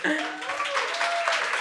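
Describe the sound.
An audience breaks into steady applause, a dense wash of clapping with voices cheering or calling out over it, loud and continuous throughout.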